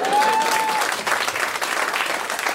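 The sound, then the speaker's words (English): An audience claps steadily throughout, a dense, sustained wash of many hands with no speech over it, while a faint whistle-like tone glides briefly at the start. “I can tell you're agreeing by your clapping.”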